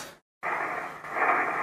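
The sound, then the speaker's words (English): Hissing shortwave radio static on the 40-metre band at night, heard while testing a newly installed antenna balun: a brief dropout to silence, then a steady, fairly loud wash of noise carrying faint crackling crashes. No voices are heard. “Ooh, a few static crashes around tonight.”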